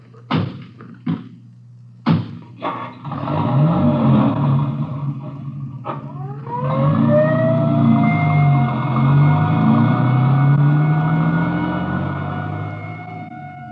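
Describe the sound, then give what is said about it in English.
A few door slams and clunks, then an ambulance engine revs up as its siren begins wailing, its rising and falling tone growing steady as the ambulance pulls away with the motor rumbling underneath. “I'll ride back in the ambulance with the girl.”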